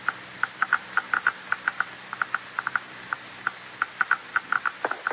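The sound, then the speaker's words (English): A radiation counter being passed over an object, clicking rapidly and irregularly, dozens of sharp, crisp ticks in quick uneven bursts of rising intensity against a faint steady hiss, with no voices. “I'll pass the counter over now and increase the intensity of the clicking, and we've got it.”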